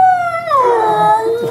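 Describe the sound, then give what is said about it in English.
A 10-week-old husky puppy lets out a high, wavering howl that slides downward into a drawn-out whimpering whine, fairly loud, heard on its own. “The couple driving 400 kilometers from 100 Mile House to Penticton to adopt a 10-week-old husky puppy.”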